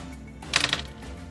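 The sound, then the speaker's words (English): A quick burst of dice clattering together as they are rolled, a bright rattling that lasts under half a second, moderately loud, with no talking over it. “Roll 1. Come on, dice.”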